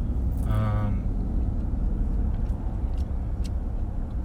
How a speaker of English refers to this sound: We still have all that, but there's a lot of traffic right now, so who knows.